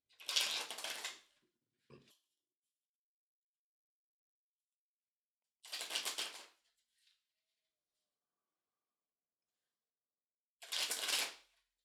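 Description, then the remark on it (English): Tarot cards are shuffled in three brisk, riffling bursts spaced several seconds apart, each followed by a soft tap or click, clear with quiet pauses between and no talking. “So just take a moment, drop in, gather yourself up from wherever you might have been, and just connect to the cards by listening in to the sound of them being shuffled.”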